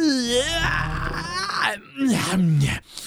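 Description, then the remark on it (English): A person imitates a creature's drawn-out yawn, a groaning, rising-and-falling vocal sweep followed by a second shorter moan, loud with no other sounds. “And it turns around and looks at you and it gives out another mimicky yawn.”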